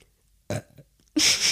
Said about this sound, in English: Uh-oh, I'm going to burp.